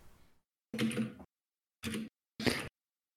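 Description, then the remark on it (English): Mechanical keyboard typing comes in three quick bursts of clattering keystrokes, each lasting under half a second, with brief silences between them and no voices. “Dude, I can hear the mechanical on that keyboard, dude.”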